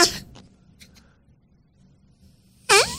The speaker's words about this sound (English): He lets out this giant... He passes gas a lot better than my fart bag just did.